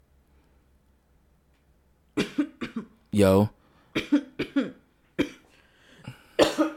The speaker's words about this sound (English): Are you just coughing into the mic now?